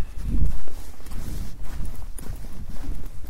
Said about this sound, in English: Still a lot of orange street lights, which is nice. But I can definitely hear the crunch of the ice under my feet.